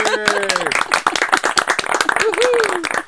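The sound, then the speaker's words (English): A woman claps rapidly and steadily for herself for about three seconds as she is introduced as a guest, sharp slaps in quick succession, while a voice lets out sliding, sung-out cheers over the clapping. “She's going to clap for herself”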